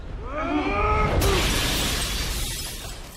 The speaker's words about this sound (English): But Dean has knocked out the cops, and this is when he rushes in and smashes the mirror.